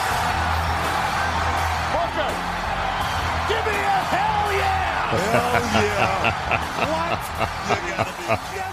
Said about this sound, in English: I mean, listen to that crowd. Listen to that pop right there for the Texas Rattlesnake.